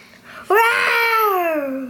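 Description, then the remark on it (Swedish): A child's voice lets out a single sustained roar imitating a T. rex, starting abruptly loud and strained, then slowly sliding lower in pitch as it trails off. “Jag tror att dinosaurier rex, det röt som ett lejon fast mycket starkare.”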